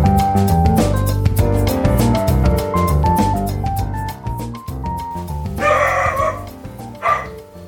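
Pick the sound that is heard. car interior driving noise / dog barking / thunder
dog barking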